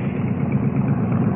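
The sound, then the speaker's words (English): A motorbike engine idles with a steady, low rumble and a rapid, even chug, holding a constant level throughout with no voices. “Oh, I could have run you down with my bike just now.”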